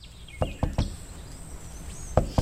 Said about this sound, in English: He's inside the van. We don't see him yet. She's outside the van, knocking on the door, very apologetic.